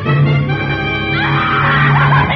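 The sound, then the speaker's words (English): A woman throws up her hands and lets out a long, loud shriek lasting a couple of seconds, shrill and strained, rising higher partway through, with no speech around it. “And then she threw up her hands and shrieked.”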